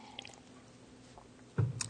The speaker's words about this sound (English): Long reading, so I got to take a drink of water.